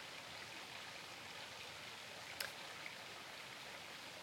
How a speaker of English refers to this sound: Let's take a step back. Let's enjoy the noise of the water.